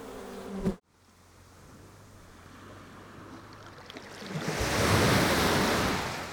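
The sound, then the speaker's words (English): A soft, steady wash of surf on Beach Grote Knip, Curaçao, builds over a few seconds into a fuller, hissing breaking wave, after a brief buzzing hum at the very start. “Parents stand, cocktails in hand, up to their knees in the surf.”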